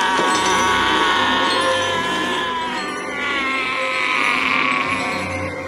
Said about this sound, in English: Here's Mama screaming.